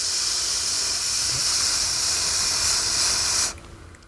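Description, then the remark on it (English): A voice imitates a snake with one long, steady hiss lasting about three and a half seconds, bright and breathy, then cutting off abruptly into near silence. “You sound like a snake that just kind of figured out how to talk”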